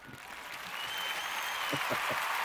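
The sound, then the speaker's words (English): A steady round of applause, dense clapping that swells slightly louder as it goes on, with a few indistinct voices rising briefly near the end. “That deserves a round of applause. Here it is.”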